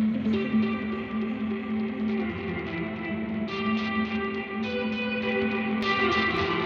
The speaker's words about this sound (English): but we can even go somewhere cooler where we can take something like this, a delay going into a reverb, pretty basic, but really cool.